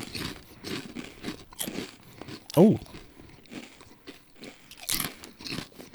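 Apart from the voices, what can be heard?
crunching on potato chips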